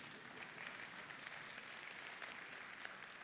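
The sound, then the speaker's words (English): A large audience at a church service claps steadily, a dense, continuous wash of many hands applauding at once, sustained evenly without any talk over it. “Yes, you may clap.”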